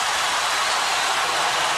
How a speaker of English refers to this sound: I love the crowd reaction. They just go incredibly nuts.